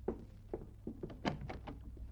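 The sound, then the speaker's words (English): A door is opened with a few soft thunks and clicks of the latch and handle, fairly faint, with no voices over it. “Shall I answer the door?”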